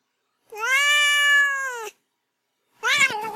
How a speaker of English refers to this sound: let's move on to Duarte's Corner, where my cat Duarte will take a moment to express his opinions about the book.